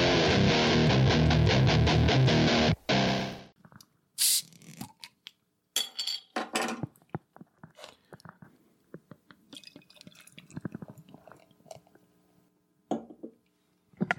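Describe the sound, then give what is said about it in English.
Orval beer is poured into a glass sitting on a computer: a dense, loud rush at the start gives way to scattered splashes, trickles and small clinks of glass, with no one speaking. “I like the confidence with the way you pour that with the glass sitting right on your computer.”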